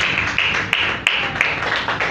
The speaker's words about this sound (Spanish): Denle un aplauso al Señor Jesús.